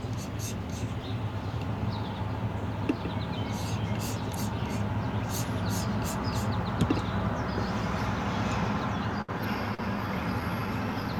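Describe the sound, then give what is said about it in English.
Short, bright bird chirps come in scattered bursts over a steady, dense outdoor background hum, moderately faint, heard in the morning. “The birds, you know, they if you listen now, you could see them.”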